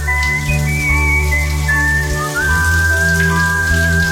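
Shower water runs in a steady, dense hiss for a few seconds, loud and unbroken, with faint high whistling tones drifting over it and no voices.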